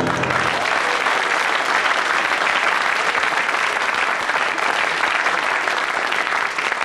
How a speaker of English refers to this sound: The audience, having reached the stage where they'll clap anything, we'll see what we'll see how they respond to you.